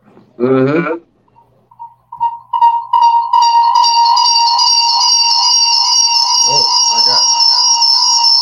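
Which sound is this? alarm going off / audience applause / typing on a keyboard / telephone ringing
alarm going off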